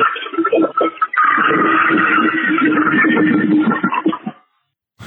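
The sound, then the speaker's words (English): A toilet flushes in one long, steady rush of water that holds for about four seconds before cutting off, followed by a brief sharp noise just after. “It's a long toilet flush.”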